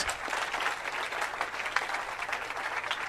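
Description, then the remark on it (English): An audience claps hands unto Jesus to thank God, in a steady, dense wash of applause that holds at a fairly even loudness throughout, with no voices standing out above it. “Keep on clapping”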